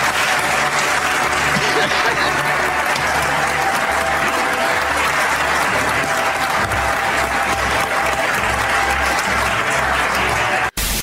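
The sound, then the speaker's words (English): A large audience gives itself a standing ovation lasting more than a minute, applauding loudly and steadily for the full stretch, a dense wash of clapping with no letup, cut off abruptly at the end. “They gave themselves more than a minute standing ovation.”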